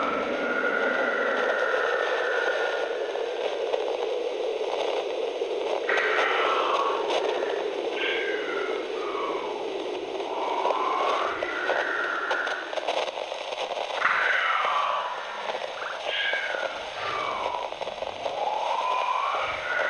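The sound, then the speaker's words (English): Steady, hissing speaker static inside an airplane cabin runs throughout, with faint, wavering whisper-like murmurs and swooping tones rising and falling over the noise. No clear words come through. “After a long wait and deafening silence, save for the sound of wind outside of the cabin, the speaker static returned. And then, so did the whispering.”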